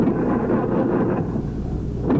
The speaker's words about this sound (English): His 1937 Packard just cranking up. Coach, started right away. Boy, I'm telling you, it runs like just like a Swiss watch.